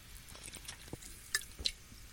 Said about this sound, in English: Oh, boy. I got to have another sip of my Bud Light Clamato Chelada for this one.